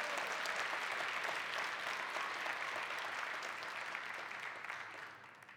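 A church audience gives the Lord a big hand clap during a sermon, a dense, steady wash of clapping that holds loud for several seconds, then gradually tapers off toward the end.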